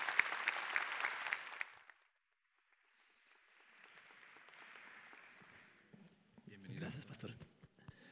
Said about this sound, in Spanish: ¿Por qué no recibimos con un fuerte aplauso,